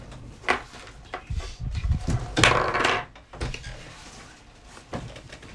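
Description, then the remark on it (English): A door is handled and pushed shut, with a few wooden creaks and rattles building to a firm thud, then quiet. “Can you just shut the door?”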